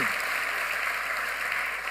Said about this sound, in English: we welcome you and we say, God bless you. Amen. Let's give all of them a round of applause. Amen. Hallelujah.